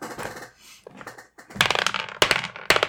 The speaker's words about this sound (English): Let's roll dice and go around the table, please.